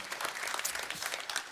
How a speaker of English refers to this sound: So I just want to say thank you so much, and I applaud you and applaud each other.